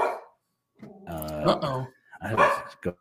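Dogs bark in a few loud, close bursts, some drawn out and yelping, with brief pauses between them and no one talking.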